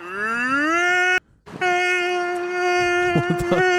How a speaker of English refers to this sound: Okay, guys, let's do a tornado siren and spin it around at the same time.